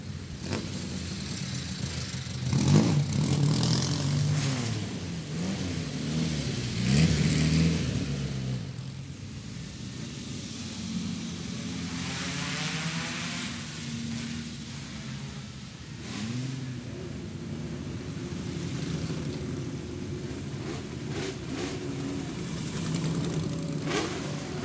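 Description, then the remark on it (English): Several 1950s and 1960s era Ferraris pull away one after another, their engines revving and rumbling, with louder bursts of acceleration early on before settling into a steady idling drone. “What I'll do is I'm going to leave you with, just for this segment, the sound of these cars pulling out. This is a collection of 1950s and 60s era Ferraris.”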